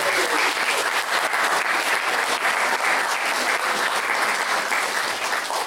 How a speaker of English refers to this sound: Oh, should we give a big round of applause? Woo!